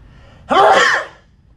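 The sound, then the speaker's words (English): A single loud sneeze bursts out abruptly and fades within about half a second, standing alone with no talking around it. “I gotta sneeze, hang on.”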